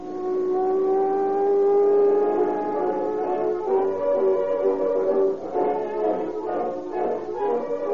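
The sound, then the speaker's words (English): A car engine hums steadily as a police patrol car drives along a dark road leading to a Northern California city, following a big sedan. Its pitch rises and falls with changes in speed, loud, with no voices over it. “Dark road leading to a Northern California city, two police officers in a patrol car are puzzled by the erratic actions of a big sedan traveling ahead of them.”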